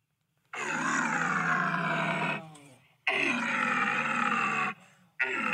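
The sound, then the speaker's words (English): Loud lion-like roars blasted through an extending three-part bugle-like tube that accordions in and out as it is played: two long, rough, growling bursts separated by a short gap, then a third starting at the end, with no talking. “Yeah, it's basically like a bugle tube, but it's got three parts, and it accordions in and out”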